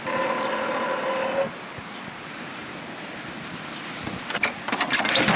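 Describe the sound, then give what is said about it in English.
A door buzzer, rung by a visitor walking up to a house, sounds one steady, harsh electronic tone for about a second and a half, then stops, leaving low background noise followed by a few sharp clicks and rattles. “I'll ring the buzzer.”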